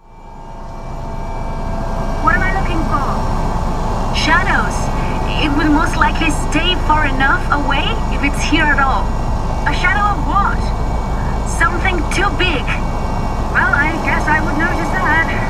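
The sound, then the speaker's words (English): A helicopter's loud, steady engine and rotor drone, a dense low rumble with rushing air, while muffled voices talk intermittently beneath it; the helicopter flies through fog and wind in endless sunlight toward Njalason. “Visibility outside the helicopter is greatly obscured, with fog and wind in the endless sunlight encompassing the craft in white.”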